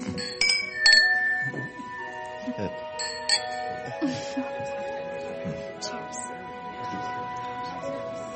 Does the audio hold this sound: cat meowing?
no